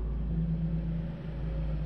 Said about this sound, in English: Joelle's car swung into my driveway at 5:30